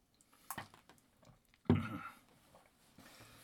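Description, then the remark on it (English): A quick sip of water followed by a louder gulp-like swallow, with faint wet mouth clicks and no talking. “I just have a little sip of water here.”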